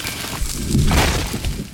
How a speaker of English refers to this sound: The groan of a life ending. A tree which had stood for at least 100 years fell, crashing in front of me.